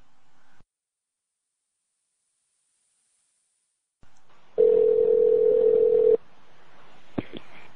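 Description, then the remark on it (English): A steady, loud telephone dial tone hums for about a second and a half over faint line hiss, followed by a couple of brief dialing beeps near the end as a call is placed to a cell phone. No one speaks. “All right, what I'm going to do is I'm going to call you on your cell phone right now, and you're going to head to that pool.”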